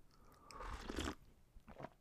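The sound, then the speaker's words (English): A fairly quiet slurping sip of hot Yogi tea lasting about half a second, followed by a softer swallow-like sound. No one speaks. “Let me just take a sip of my tea.”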